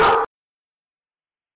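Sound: dog barking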